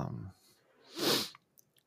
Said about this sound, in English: Pardon the sniffle there. It's not tears, it's just allergies. I love it here in Texas and all the beautiful allergens in the air.